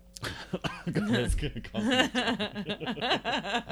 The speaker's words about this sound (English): Oh, sorry. That caused a cough.